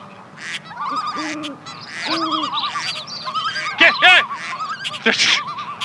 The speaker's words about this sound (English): There's so many birds! Oh! Where did that duck come from?